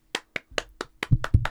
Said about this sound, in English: Round of applause.